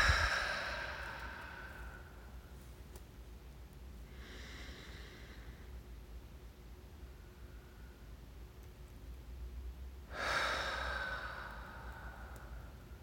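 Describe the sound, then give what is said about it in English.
A slow, deep breath drawn in through the nose and held, followed by a long quiet pause and a softer exhale, then another strong inhale near the end, airy over faint background hiss. “Breathe deeply through your nose. Hold your breath for a few seconds and then release.”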